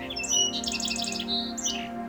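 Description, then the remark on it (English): A song sparrow sings, starting with a few separate whistled notes, then a quick run of repeated notes before ending with a couple of sharper phrases, clear over a low steady hum. “They usually begin their song slowly, with spacing between notes, and then continue with faster notes and trills.”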